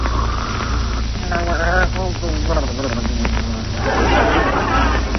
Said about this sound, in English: Oh, listen to those beautiful pear-shaped snores. It sounds like a frog with a man in his throat.